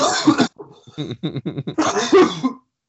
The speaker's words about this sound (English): I cough that out.